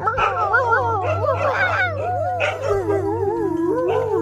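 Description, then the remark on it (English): A pack of dogs whimpers, yips and howls all at once, their overlapping whines rising and falling continuously over a low steady hum, fairly loud. “But as he stepped inside the first cave, he saw them, his pack.”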